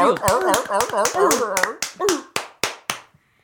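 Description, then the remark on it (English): Applause after a 3-2 vote naming a new supervisor, in steady, sharp claps at a quick rhythm, with wavering, whooping voices over the first half; the voices drop away and a few spaced claps finish before silence. “What are you idiots applauding?”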